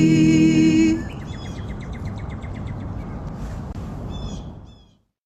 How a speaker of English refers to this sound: Particularly love the bird songs in the back of that one.